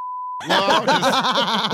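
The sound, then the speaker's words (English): A brief, steady censor bleep tone sounds alone for a moment, then cuts off as loud, wavering voices break in, chuckling and talking over each other. “Well, beep, beep, beep, beep, beep.”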